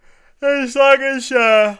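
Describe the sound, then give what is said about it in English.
A person yawns aloud, a drawn-out voiced groan lasting over a second, broken by a couple of breathy intakes, with no other talking. “we got to wrap up soon. I'm yawning.”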